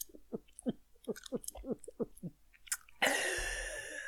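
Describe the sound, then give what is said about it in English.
A quick, steady series of about nine wet gulps, roughly three per second, as kombucha is swallowed down, ending in a loud, breathy gasp of air. “Sorry, I had to gobble down some cum. Kombucha.”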